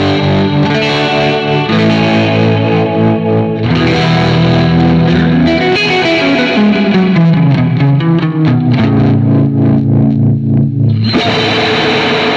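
An electric guitar plays loudly through distortion, chorus and reverb effects, the reverb on an expression pedal, thick sustained chords with bending, sliding notes in the middle, ringing out steadily for about twelve seconds with no talking.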